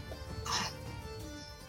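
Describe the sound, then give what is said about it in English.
A single quick sneeze bursts out, sharp and breathy, lasting well under a second against a steady low background hum, with no talking around it. “Bless you.”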